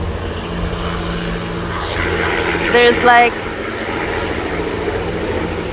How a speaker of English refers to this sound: Oh, there's a helicopter. There is a life flight helicopter going overhead. Sorry, everybody. I do these while I walk around my neighborhood, so I am exposed to the elements. So that was a helicopter.